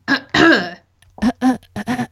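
Someone clears their throat: two loud, rough rasping bursts, then a quick run of four short voiced grunts, with no talking.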